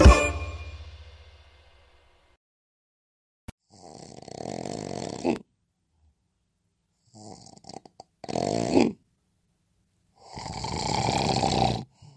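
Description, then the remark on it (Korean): A fading metallic chime rings out, then three loud, rasping open-mouth snores follow at steady intervals, with silent gaps between breaths and no talking. “혹시 이렇게 입을 벌리고 코를 골거나 숨도 멈춰지나요?”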